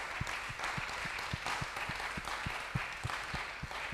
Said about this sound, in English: Let's put our hands together and give the Lord a very big hand clap of praise.